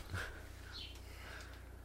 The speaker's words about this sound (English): I like how we can hear birds. We have an ambient noise going on.